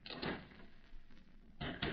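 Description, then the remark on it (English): Knocking on a wooden door: two quick raps, a pause of over a second, then two more, sounding firm with no voices. “I'll open the door, Mary.”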